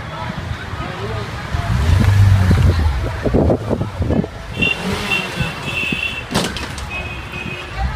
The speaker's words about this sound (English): Now they're playing bumper cars in the middle of a parking lot.